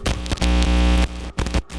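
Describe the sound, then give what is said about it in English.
Loud, harsh static crackles and buzzes with a low hum underneath, cutting out briefly in a few sharp gaps before resuming, no voices present. “That's the static that intros.”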